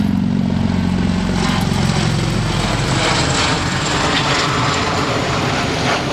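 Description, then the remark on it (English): A seaplane drones overhead above the East River by Carl Schurz Park on the Upper East Side of Manhattan, a loud, steady propeller-engine roar with a low throbbing hum that stays strong for the whole stretch, no voices heard. “As a seaplane, yeah, that's throwing, going to throw your audio out of whack right here.”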